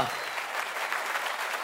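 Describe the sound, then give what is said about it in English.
An audience claps for a panel in steady, dense applause, a continuous crackling patter of many hands held at an even level for the whole stretch, with no voices standing out. “Can we get a round of applause for our panel?”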